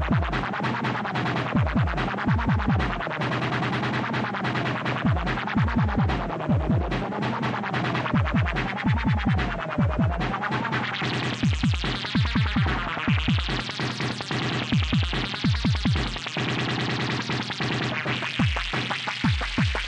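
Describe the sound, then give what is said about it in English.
A Blip Blocks After Dark toy synthesizer groove box is jammed on alone, thumping in a steady pulsing bass rhythm while bright wavering synth tones swoop up and down above it, growing busier and buzzier in the second half. “everything that you've heard under my dulcet tones in this intro has been me jamming on the Blip Blocks After Dark.”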